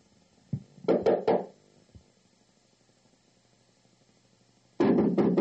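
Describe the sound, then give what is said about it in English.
Firm knocking on a wooden door to get Mr. Bob Joe to answer: a quick cluster of three raps, a lone soft thud, then a louder, rapid burst of pounding at the end, with no voices. “Will you answer this damn door now?”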